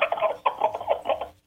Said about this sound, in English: When a turkey gobbles, the male turkey, he's gobbling to attract the hens. Mother Nature, as a rule, he starts gobbling.